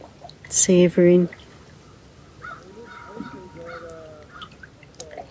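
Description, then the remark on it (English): Loons call faintly in the distance, their thin, drawn-out tones floating over an outdoor hush, after a pair of louder, harsher bird calls near the start. “Feeling gratitude for the loons calling in the distance.”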